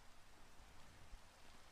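Steady, soft hiss of falling rain, a continuous wash of fine drops with no distinct thunder or voices, faint and even throughout.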